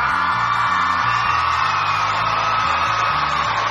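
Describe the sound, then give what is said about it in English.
A crowd cheers and whoops continuously, loud yells and shouts layered over a steady roar, with a thumping bass rhythm pulsing underneath throughout. “Okay, I will try and resist the crowd surge right there.”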